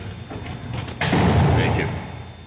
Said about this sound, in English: You can close the cell door, guard.